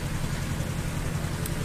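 An aircraft engine drones steadily as an aircraft taxis in at the Old Buckingham Air Show on a cold, windy Sunday morning, a continuous low humming roar with a broad hiss on top and no pauses or voices.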